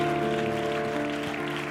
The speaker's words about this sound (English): Come on, why don't everybody clap your hands to the Lord together?